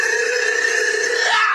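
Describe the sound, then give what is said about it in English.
A person lets out one long, loud howl, a strained, steady, high-pitched vocal cry held for over a second with no break and no other talking. “Say that shit like you mean it. Howl it.”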